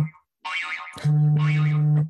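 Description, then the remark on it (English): A timer goes off during a question game, as someone is about to answer: a loud, warbling boing-like electronic tone, then a steady low buzzer drone holding for about a second before cutting out. No one talks over it. “You don't have to answer a question if the timer goes off when you're about to answer it.”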